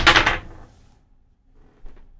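A sharp, loud clatter of dice being rolled, rattling for a moment before fading, followed by a softer knock or two as they settle. No voices.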